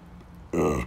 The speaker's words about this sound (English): Let me burp a little. Oh, my. Sorry.